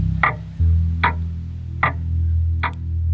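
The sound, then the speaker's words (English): A clock in a kitchen ticks slowly and steadily, four distinct clicks spaced evenly apart over a low, constant background hum, with no voices present. “But aside from the ticking clock, everything is quiet.”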